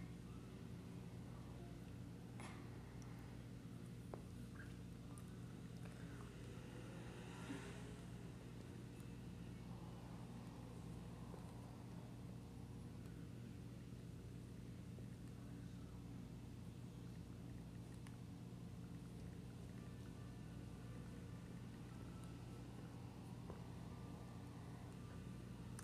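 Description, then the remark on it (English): Race car engines at a dirt track race drone steadily together in a dense, low rumble that holds at an even volume throughout, with a few brief sharper bursts cutting through and no voices, as the cars race back under the green flag. “Oh, one car goes out of the track.”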